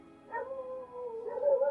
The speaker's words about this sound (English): Jeez, your dogs. I know. They're super riled up today. I don't know why.